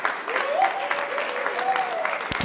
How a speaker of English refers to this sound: And let's have a round of applause for everybody here, Kappa Alpha Order at the University of Nevada, Reno. Thank you, guys.